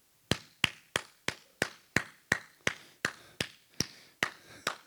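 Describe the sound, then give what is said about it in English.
A steady run of about a dozen sharp hand claps, evenly spaced at a brisk, regular tempo, each crisp and bright with a quick decay, with no voices. “You know how I clap my hands?”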